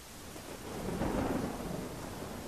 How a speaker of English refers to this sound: We're out in a storm about 10 miles off the coast of Whitby. Out of view of the shore.